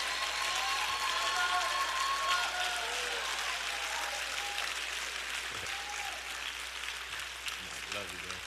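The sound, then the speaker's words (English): Loud, steady applause as a man comes to the stage fills the whole stretch, with high-pitched screams and excited cheering from his wife and daughter rising above it in several drawn-out bursts. “All that noise y'all heard back there, that was his wife and daughter, all that screaming.”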